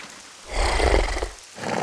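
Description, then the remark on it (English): Torrential rain pours down on a street during a thunderstorm as horses pull a coach, a dense, steady hiss swelling into a louder rumbling roar in the middle before easing back. No voices are heard. “Igor pulled the horses down the street in the torrential rain.”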